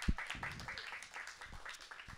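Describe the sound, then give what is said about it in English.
A burst of applause at an event being recorded for Radio 2, a steady crackle of many hands clapping at once, fairly soft and dense, running the whole time with no voices over it. “And I want to give you an applause for that. Claps.”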